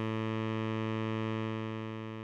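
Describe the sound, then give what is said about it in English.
A steady, buzzy synthesizer drone holds one pitch for the whole moment, thick with harmonics and heard alone, fading very slightly toward the end. “It kind of sounds like the droning of the bug zapper lamp outside your porch.”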